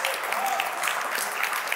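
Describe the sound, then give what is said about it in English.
An audience claps and cheers steadily for a woman who explained the book of Leviticus. A dense wash of many hands at a moderate, even level carries through the whole short stretch without breaks. “Come on, you can cheer for her.”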